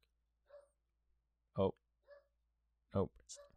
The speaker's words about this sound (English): Oh. All right. Yeah, sorry. The dog was barking a lot. We had to go take care of that. We had to pause it real quick.